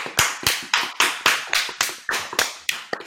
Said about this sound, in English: I think we should all give ourselves a round of applause. Come on.